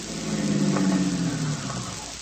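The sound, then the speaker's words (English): A car engine rumbles steadily, its low hum easing off and fading slightly as the vehicle slows to a stop in a street. No one speaks. “Stop the car, Vitamin.”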